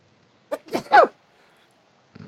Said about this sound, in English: sorry. Give me a second. I have to sneeze.